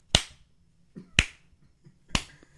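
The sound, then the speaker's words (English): Three sharp hand claps ring out one at a time, spaced roughly a second apart, with near silence between them and no voices. “Hey, by the way, everybody, this is the clap.”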